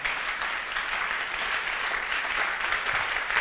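A crowd claps steadily, a dense, even patter of many hands that holds at a constant level throughout, with no voices breaking through.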